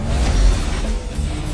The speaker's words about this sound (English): This is our cop car! This is our cop car! See how fast we can go. Driving a cruiser.